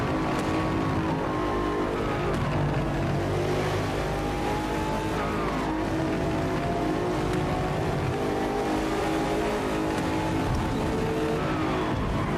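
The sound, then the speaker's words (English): A BMW M8 car engine in a driving video game, on the Maple Valley track, drones loudly and continuously, rising and falling in pitch as it revs and shifts through gears, with occasional tire squeal, without talk. “Let's jump in with the M8.”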